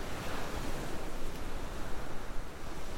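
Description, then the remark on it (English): Steady ocean surf washes against the shore of a beach in a continuous, broad rushing roar, rising and falling gently with a soft wind-like hiss on top; no voices are present. “Noticing the waves hitting the shore.”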